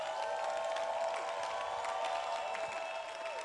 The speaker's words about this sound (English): Give him praise. At the back, give him praise. At the side, give him praise. He's the most important person here. Give him praise. Amen. The Bible says, clap your hands, all ye people, and shout unto God.